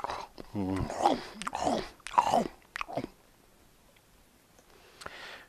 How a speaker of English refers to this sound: One meets a tall giraffe, munching tasty leaves.